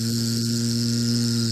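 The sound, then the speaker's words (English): A steady, droning insect buzz holds at an even pitch for a couple of seconds, fairly loud, with a faint hiss running beneath it and no voices, as something buzzes towards the listener in a forest. “Something buzzing towards you that you read about in your book.”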